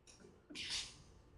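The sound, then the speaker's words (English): A single sharp sneeze bursts out, a quick breathy inhale followed by a loud hissing expulsion that fades over about half a second. “Bless you.”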